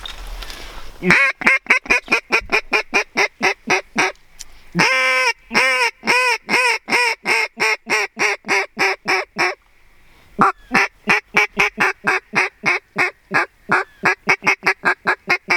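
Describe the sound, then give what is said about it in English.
A flock of geese honks loudly and continuously, rapid overlapping calls in steady bursts with a few brief pauses, and no talking. “There's some more right under those geese right there.”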